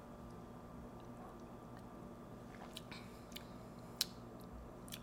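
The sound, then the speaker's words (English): Quiet mouth sounds of someone sipping a drink with ice, a few brief soft slurps and clicks over a low steady hum, with no talking. “Hold on, let me get another sip.”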